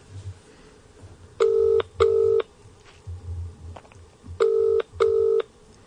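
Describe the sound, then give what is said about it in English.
A phone call placed on speakerphone from a pub quiz rings out, two double-burst rings with a pause between them, fairly loud and slightly tinny, over a low background rumble and no talking. “She never answers the phone.”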